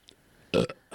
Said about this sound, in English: All I can hear is … burping.